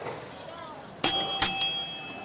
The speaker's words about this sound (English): Oh, oh. I rang the bell.